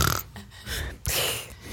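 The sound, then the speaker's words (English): A person vocally imitates a very loud human snoring, with two rough, rasping snorts split by a short pause, forceful, with no spoken words. “they're snoring at different cadences. So one's like a very loud human, like”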